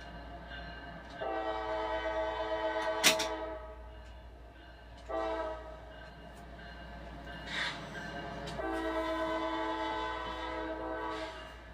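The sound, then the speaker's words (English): An intermodal freight train, nightly traffic for Tampa, rumbles past while its horn sounds in three long, loud blasts separated by short gaps, with a sharp metallic clank and steady rolling noise underneath. “QO45 is nightly intermodal traffic for Tampa.”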